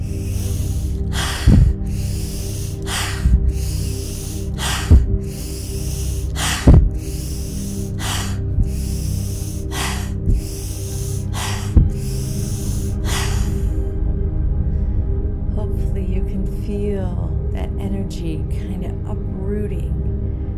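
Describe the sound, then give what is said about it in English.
A guided breathing exercise of eight deep, rhythmic breaths, with sharp inhales through the nose alternating with exhales through the mouth. The breaths are loud over a low steady drone. Then the breathing stops and the drone continues alone. “We're gonna do 8 breaths again, breathing in through our nose and out through our mouth.”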